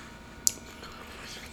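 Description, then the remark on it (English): Someone chews a Special K cereal bar: one sharp, crisp crunch followed by faint, soft chewing sounds, with no voices. “Stop chewing them goddamn Mentos, bro. That was a special K bar.”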